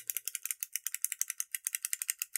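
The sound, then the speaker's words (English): A pen being clicked over and over in a rapid, steady run of about twenty sharp, bright clicks, with no talking over it. “That's me clicking a pen irritably or as a...”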